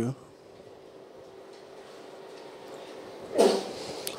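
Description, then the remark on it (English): A single sharp sneeze bursts out near the end, fairly loud, after a stretch of quiet room hum with no talking. “Bless you.”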